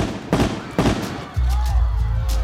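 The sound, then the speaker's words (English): Two sharp, loud gunshots crack out about half a second apart, fired at Renault's president George on his way home near Boulogne-Billancourt. A low, steady droning hum follows and continues to the end. “He lay on the cold ground, bleeding out from 4 gunshots to the chest.”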